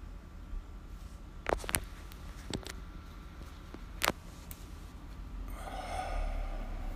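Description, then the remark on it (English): During a breathing exercise, a quiet stretch of breath held for a five count after inhaling through the nostrils, broken only by a few small nasal clicks and sniffs, then a soft, airy exhale through the mouth rising near the end. No one speaks. “You're inhaling through your nostrils, right? Holding it for five, or whatever the count is, and exhaling through your mouth on five.”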